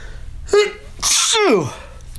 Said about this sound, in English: Uh-oh, I'm going to sneeze.